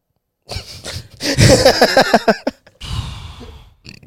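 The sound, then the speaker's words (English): A long, loud burp with a warbling, rising-and-falling pitch and rough, gravelly texture, followed by a breathy exhale and a few soft clicks. “Why did that burp sound like the start of Goof Troop?”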